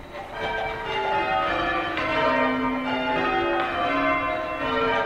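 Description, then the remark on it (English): Church tower bells ring one after another in a steady cascading sequence during change ringing by a group of amateur ringers at the University of Chicago, each pulling a rope connected to a bell up in the tower. Overlapping tones fill the air continuously and fairly loudly, with no voices present. “A bunch of people stand around in a circle, and each one holds a rope that connects to a bell up in the tower. They ring their bells one after another, making a waterfall of sound.”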